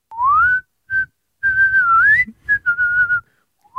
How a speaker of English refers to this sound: Oh, I want to hear a whistle.